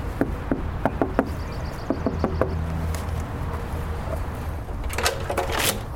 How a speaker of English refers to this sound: I knocked on the door of a cute ranch-style house, and one long-time resident was at home.